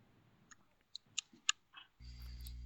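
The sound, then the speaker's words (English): Heard over a telephone line on hold at a police precinct, faint, irregular typewriter-like clicks tap out a few sharp keystrokes in the background, then a steady low buzzing hum takes over near the end. “You can hear faint noises in the background of typewriters and stuff.”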